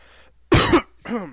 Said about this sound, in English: I've had that cough for the past hour.